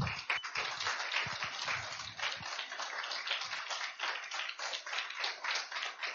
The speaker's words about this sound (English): Again, congratulations. A round of applause.